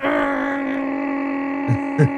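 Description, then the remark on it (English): A person hums a steady, droning mechanical tone, imitating the engine of a vent cleaners' big vacuum truck, with two brief breathy bursts near the end. The imitation is sustained. “And she said, no, the guys with the big truck, with the big vacuum truck that suck.”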